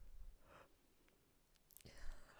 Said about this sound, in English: Yeah, I'd appreciate it if you yawned directly into the microphone every time.